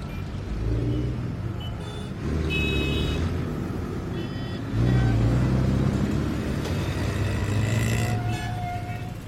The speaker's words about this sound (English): After a six-hour bus trip, JezBot finally reached its destination.